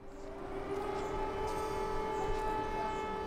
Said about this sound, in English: As we filmed, sirens warned of another possible strike on Lviv.